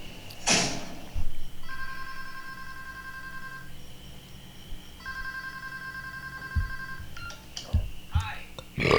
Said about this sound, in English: Look, that is called an answering machine. Before cell phones, we had pagers and landlines. And an answering machine took your messages for you.